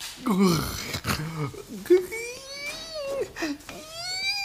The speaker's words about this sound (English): Stop breathing so heavy, please, we gotta study.